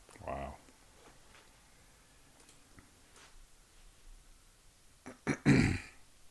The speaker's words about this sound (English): Oh, sorry. Sorry, I had to clear my throat in an understanding psychosomatic way.